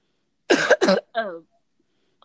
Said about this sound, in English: Oh, I'm sorry. I'm like, going to keep coughing.